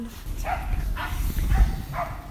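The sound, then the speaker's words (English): Dogs yapping in a quick series of about four sharp barks, evenly spaced over a steady low rumble of background noise. “There's a lot of yapping there going on.”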